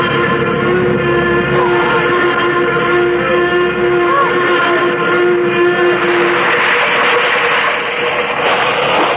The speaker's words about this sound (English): Suddenly, the plane lurched sharply. There was a loud rushing sound in my ears, and I realized that we were coming down. But fast, much too fast.